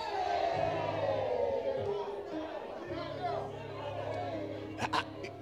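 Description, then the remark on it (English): A crowd of many voices shouts and clamors at once in a steady, dense roar, with a few sharp bursts near the end rising above the din. “Do you know the reasons why people are shouting?”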